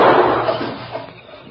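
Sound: gunshot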